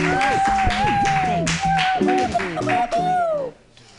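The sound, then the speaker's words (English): Audience applause at a comedy show: a steady patter of many hands clapping for about three and a half seconds, mixed with voices whooping and cheering over it, then fading quickly. “All right, everybody, give it up.”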